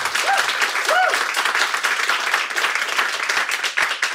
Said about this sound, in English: Can we have a big round of applause for them?